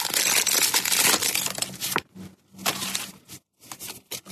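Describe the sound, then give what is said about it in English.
A Pokemon card pack is torn open: a loud, continuous burst of crinkly foil crumpling and tearing for about two seconds, then shorter rustles and crackles separated by brief pauses. “He's opening Pokemon cards.”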